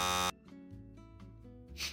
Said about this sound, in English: You're so fast with the buzzer.